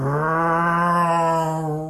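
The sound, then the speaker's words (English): A single sustained, buzzing vocal tone imitating a car passing by to show the Doppler effect, held steady for about two seconds and dipping slightly in pitch at the end. It is loud and alone. “So like when a train goes by and goes, you know, when it's coming towards you, it's a certain pitch and it goes away. Or a car going by.”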